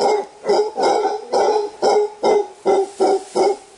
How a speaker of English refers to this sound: That is the male howler monkey.